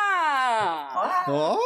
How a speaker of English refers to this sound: Are you going to sit back there and scream this entire time? Is that your plan? Yes, actually, it is. I'm talking to the cat, but yes. Oh, okay. Yes, that is her plan.